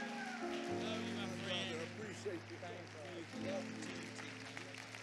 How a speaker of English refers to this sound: Let's receive them with a great big hand clap. God bless you this morning.